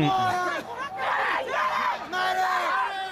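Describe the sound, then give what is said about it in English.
A crowd of protesters shouts and yells at once, loud and overlapping, with raised voices rising and falling in waves across a few seconds, screaming for a medic as police move forward to push them back from a statue. “Now they're screaming for a medic, as if this is Vietnam.”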